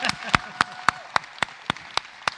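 Steady, rhythmic clapping from an audience, about nine sharp claps in unison at an even pace, fairly close and clear, with faint murmuring voices underneath.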